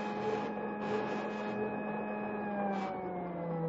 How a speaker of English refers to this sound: Now, I'll put on a spool of defectively insulated wire. Mm-hmm. There. Hey, what's that? Well, each time there's a break in the insulation, this buzzer sounds off.